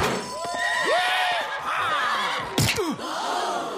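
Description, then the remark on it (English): A horse whinnies in several rising and falling cries over a steady crowd din, with a sharp, loud thump partway through as an outlaw rider is thrown violently off the horse and hits the ground. “So we see the first outlaw thrown violently off his horse, but the warden reminds us that the crowd that these are criminals.”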